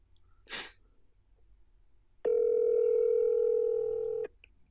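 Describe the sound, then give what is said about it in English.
A brief breathy puff, then a single steady electronic ring tone on a phone line, a call to the BMF Cast and No Quarters Hotline (the Garfield phone), holding for about two seconds and cutting off, fairly loud, with no talking. “Pick up, Bamfcast. Come on, guys. I need to talk to you.”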